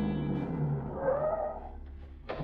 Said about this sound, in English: It's only a few minutes later that a car drives up.